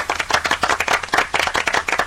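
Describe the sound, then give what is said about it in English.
A short burst of applause, rapid overlapping hand claps from a small group, steady for a couple of seconds with no voices. “Round of applause.”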